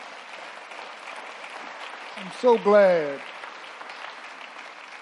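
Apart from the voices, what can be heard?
audience hand clapping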